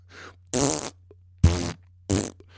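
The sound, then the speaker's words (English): Three loud, buzzy fart sounds in quick succession, each about half a second long with a brief gap between, over a faint low hum and a softer sputter at the start. “but just know that I, and I'm sure many others of us, would still love your podcasts, even if you farted into a can for 45 minutes.”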